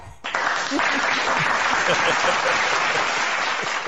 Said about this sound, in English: Round of applause.